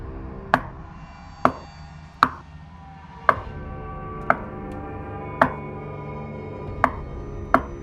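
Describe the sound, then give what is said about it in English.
A tapping noise: eight sharp, distinct taps at uneven intervals, each crisp and percussive, over a steady, low, humming musical drone. No one speaks. “What is that tapping noise?”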